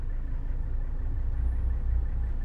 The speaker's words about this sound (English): And a little bit of traffic here as we try to get on to the Lincoln Tunnel extension.